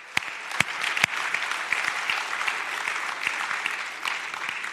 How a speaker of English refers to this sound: Let's just give God another round of applause for this lady.